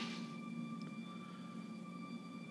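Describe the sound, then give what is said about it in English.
The siren of a fire truck driving by outside a hotel holds one steady, shrill tone without rising or falling, ringing continuously at an even level over a low background rumble, with no one speaking. “Got a crazy siren going on out here.”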